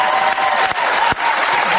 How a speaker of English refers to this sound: Begging for applause.